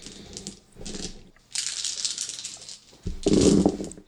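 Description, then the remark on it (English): A handful of 13 dice clatters and rattles in several bursts, a sustained stretch of rolling and tumbling, then a final loud scatter across a hard surface, with no voices. “So roll 13 dice versus 4 stun.”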